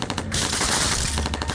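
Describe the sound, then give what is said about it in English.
A loud burst of gunfire fired through a locked, painted wooden front door: rapid shots, then a dense, sustained blast of noise, followed by a few more sharp cracks. No voices. “The bullet blast ripped through the door, sending shards of painted wood spinning into the air.”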